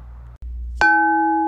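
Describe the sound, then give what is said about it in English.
A low, steady hum gives way to a single struck sound-healing bell, rung during a sound healing session as the cue to take a deep breath in. Its bright ding rings on loudly as a sustained tone with layered overtones. No voices. “When you hear the sound of the bell, that is your cue to take a deep breath in and listen to my voice for the release.”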